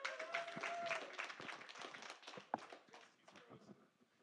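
An audience claps and cheers, a dense burst of applause with a high whoop or whistle early on, staying loud for a few seconds before gradually thinning out.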